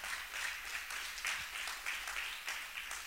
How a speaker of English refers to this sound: Come on, y'all should be clapping for this.